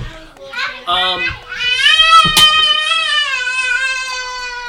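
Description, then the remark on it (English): Children playing and calling out, followed by a long, loud, high-pitched squawking cry of seagulls overhead that holds steady to the end, with a brief sharp knock partway through; the place is fairly far inland. “You hear children and seagulls above, you know, playing, and the seagulls are squawking.”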